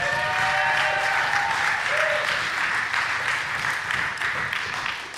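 An audience breaks into loud, sustained applause, a dense wash of clapping that holds steady for about five seconds with a few faint whoops mixed in before it begins to taper slightly.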